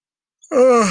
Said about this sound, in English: classic yawn.